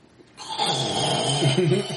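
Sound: voice imitating loud snoring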